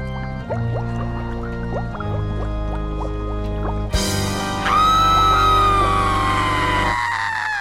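A woman lets out a long, loud, piercing scream that slowly falls in pitch, preceded by a few seconds of quiet rhythmic clicking and a low hum.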